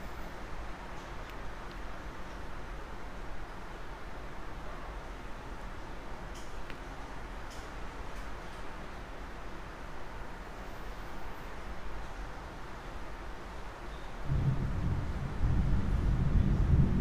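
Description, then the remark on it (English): A steady, soft wash of rain hisses evenly for the whole stretch, with a few faint patters, and a deeper rumble swells in over the last few seconds. Nobody speaks. “You can hear the rain.”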